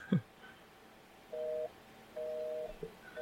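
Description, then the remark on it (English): A phone busy signal beeps through a speakerphone after the phone's own number is called back, steady dual-tone pulses repeating at regular intervals, moderately loud with a slightly tinny quality and faint room noise between beeps. “Busy. Busy signal.”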